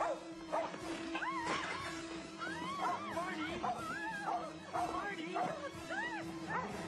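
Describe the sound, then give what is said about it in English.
A dog barks and yips inside a bank in quick, repeated bursts, fairly loud, its high rising-and-falling cries running over a steady low hum and noisy background. “What is that dog doing in here?”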